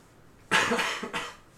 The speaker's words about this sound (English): She gives a little cough.